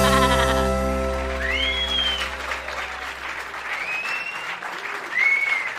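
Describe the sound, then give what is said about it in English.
A sheep lets out a long, wavering bleat, followed by a few shorter, higher calls over a steady, crackling background noise. “I'm a mountain girl, and I sure do love my sheep. Not my cow, but my sheep.”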